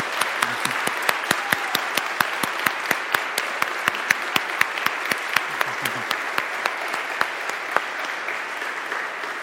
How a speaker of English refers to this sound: But I want you to embarrass all of them this morning. Give them a big hand of applause for the good work that they've done.